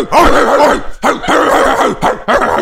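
A voice imitates a dog barking: a run of loud, rough, yelping barks in quick bursts with brief gaps between them, no talking over them.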